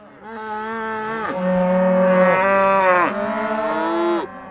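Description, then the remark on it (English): Cows moo in a run of long, low, droning calls, one flowing into the next over about four seconds. They sound fairly loud, with no talking. “And where would you even put the cows?”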